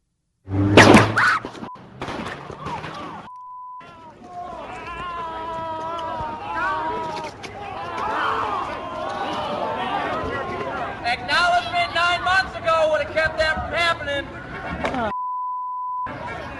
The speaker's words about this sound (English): Police officers were out in riot gear. It was pretty peaceful. And then at some point, gunshots rang out. And I actually have audio of that.